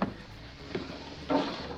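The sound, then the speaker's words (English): A short mechanical click, then a louder clunk and a brief rumbling slide as an exit door unlatches and opens after the big red button beside it is pressed, with no voices. “What do you think that big red button is next to the door? It says exit. You don't think it'll open the...”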